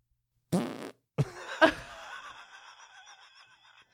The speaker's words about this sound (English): That's such like a mid-sode fart. Totally stoked. Sounded like you were trying to say something with it.